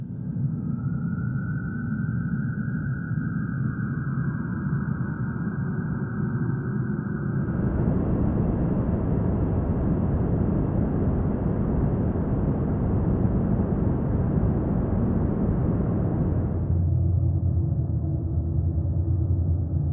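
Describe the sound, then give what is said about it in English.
Dark, ominous drones layered over a deep low-end rumble, sustained without a break and shifting into a denser, grittier texture midway before settling back down. No voices. “Dark by Badland Sounds is 15 scary, ominous dark drones to put some unease into the audience. Low-end rumbles, sinister drones, creepy atmospheres.”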